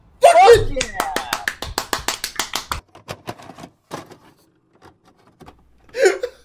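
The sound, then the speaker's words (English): A loud burst of rapid hand clapping, about a dozen sharp even claps, when a dog died, then a few scattered softer ones, with a short shout just before and a brief vocal sound at the end. “We will have proof that we both clapped when that dog died.”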